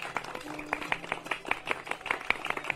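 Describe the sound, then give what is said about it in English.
Scattered, modest audience applause at an event in a large barn: a loose patter of individual claps at an uneven, fairly quick rhythm, sounding a little subdued, without a full roar of a big crowd. “Not as much applause as you were giving …, but I'm not upset about that.”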